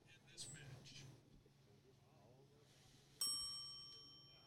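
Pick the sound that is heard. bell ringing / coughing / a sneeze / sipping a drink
bell ringing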